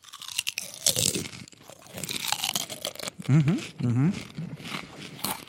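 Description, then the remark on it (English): Loud crunching as someone bites into a small stack of crisp tortilla chips, followed by steady chewing, with a couple of brief voiced murmurs partway through. “I think we're gonna go in for the crunch.”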